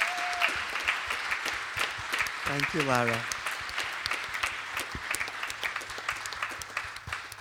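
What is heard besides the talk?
audience applause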